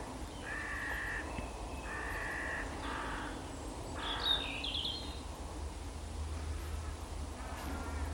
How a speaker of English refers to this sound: I do love to watch a corvid, if you want a bird with lots of character. I wonder when they do that, when they don't settle, whether one of them's annoyed the other one. Got the comfy spot, so they've decided it's time to rearrange.